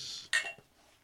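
Glasses clink together in a toast: one bright, ringing chime with high tones that fade quickly, after a soft rustling hiss and followed by a faint knock. Nobody speaks.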